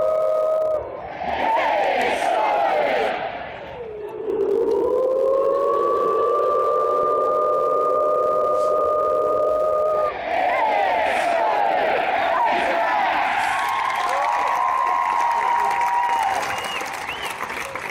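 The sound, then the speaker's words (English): A huge football stadium crowd does the Woo Pig Sooey cheer, calling the Hogs: a long, rising, siren-like "woooo" held for several seconds, then bursts of shouting and cheering, loud throughout. “Now, that's at a football stadium where the sound can get out.”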